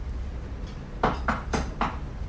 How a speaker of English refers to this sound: What was that? Oh, it's this door. I'm just going to grab it, actually.